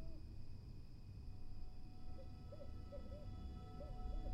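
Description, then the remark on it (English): An owl hoots softly several times in a loose, repeating pattern, over a steady low rumble and faint high hum of night ambience. No one speaks. “I think of the owl heading to his home, bedding down and getting warm, fluffed up feathers and soft down.”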